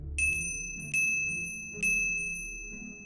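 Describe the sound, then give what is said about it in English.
A small coffin bell is struck three times at roughly even intervals, each bright, clear ding ringing on and overlapping the next, over a faint low rumble in the background. “This was a good idea, but unfortunately, natural decomposition processes, including bloating, could cause the corpse to shift in its coffin and sound the bell for a false alarm.”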